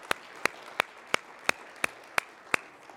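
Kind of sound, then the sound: crowd, audience hand clapping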